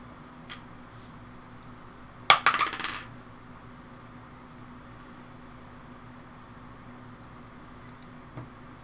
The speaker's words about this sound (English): Just more dice rolling, nothing to be alarmed about.